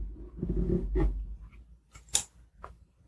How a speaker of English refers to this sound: So I'm going to take my fabric cutting scissors and just select a few pieces of material and gently cut a few bits off for you to feel. I'll just grab my scissors.